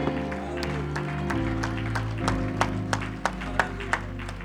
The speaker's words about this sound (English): Give the Lord one more hand clap and a shout of praise this morning.